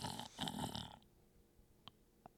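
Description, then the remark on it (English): A loud, rough snore, apparently a person imitating snoring, lasts about a second, then fades to near silence broken by a couple of faint clicks. “That was me snoring.”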